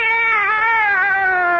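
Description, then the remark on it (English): A cat, Minerva, gives one long, drawn-out meow, loud, its pitch sagging slightly as it holds steady for nearly two seconds with no talking. “Meow!”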